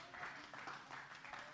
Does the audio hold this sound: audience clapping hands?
yes